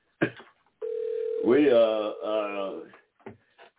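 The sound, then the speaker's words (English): A click, then a steady telephone dial tone of an outgoing call, one of several calls made to get people excited about an election, hums for a moment before a voice starts talking over it; a few faint handling clicks follow at the end. “We just been kicking it all day, y'all, trying to... make a few phone calls, get people excited about the election, talk a little politics, and try to convince people how important this thing is this Tuesday.”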